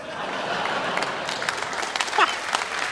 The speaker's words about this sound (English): A surprising round of applause by the older gentleman in the front on that one.